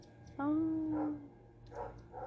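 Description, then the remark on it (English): A single drawn-out, tonal bark from a neighbor's dog rings out, close to a howl, followed by faint muffled sounds that may be indistinct voices. “By the way, that's not our dog barking in no. the background. It's neighbors. It's a neighbor dog.”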